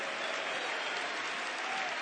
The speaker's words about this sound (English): I've not come tonight to lead a pep rally in the city auditorium, but it is still apostolic to clap your hands and to make a joyful noise unto the Lord.